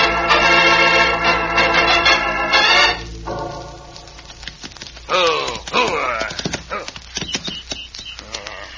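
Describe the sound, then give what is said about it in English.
The hooves of a fast horse clip-clop in a quick, uneven rhythm, starting under a loud, sustained tonal sound and then continuing more exposed with sharp clattering hits toward the end. “You're a fast horse. You're a good horse.”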